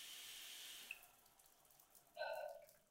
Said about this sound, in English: Turn off the shower.